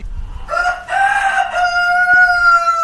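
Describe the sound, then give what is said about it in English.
A rooster crows loudly, one long harmonic call held for over two seconds after a brief rising start, with faint background clucking underneath and no talking. “They have to crow at least once a day.”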